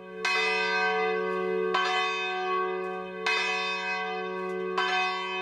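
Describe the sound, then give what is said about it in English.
Church bells of St. John's, a Benedictine monastic and college community in central Minnesota, ring out on a September day in a steady, unhurried rhythm: four strong rich strikes about one and a half seconds apart, each with a long shimmering overtone-laden decay blending into a continuous hum. No voices. “The bells herald a new day at St. John's, a Benedictine monastic and college community nestled in 3,000 acres of lake and forest in central Minnesota.”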